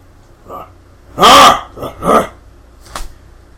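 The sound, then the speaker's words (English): A voice gives a couple of loud, rough growls imitating an ogre in robes snarling, with a fainter grunt before and a short huff after. “And it stops, and it starts growling at it, and it's like, as soon as you go through the clearing, it just looks at you in shock.”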